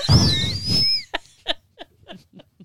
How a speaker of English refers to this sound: She's made me whistle like a kettle.